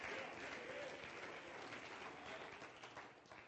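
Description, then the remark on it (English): A large group claps hands to the Lord in a dense, sustained burst of applause that fills the space steadily, with no voices standing out above it. “Come on, clap your hands to the Lord right now.”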